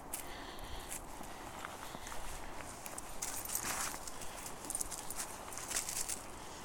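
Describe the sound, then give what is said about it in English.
Footsteps of people walking with a dog crunch and snap branches underfoot, an uneven run of sharp cracks and rustles over a steady outdoor hush, with no one talking. “So I'm going to try and walk up to this area pretty quietly with the dog, but you can hear us snapping branches under our feet here.”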